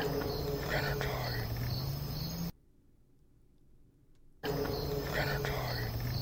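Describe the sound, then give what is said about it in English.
Crickets chirp steadily in a dense, buzzing chorus at Mount Cutha, Queensland, Australia; the chorus cuts out completely for about two seconds midway, leaving near silence, then resumes at the same level. “You can also hear crickets in the back.”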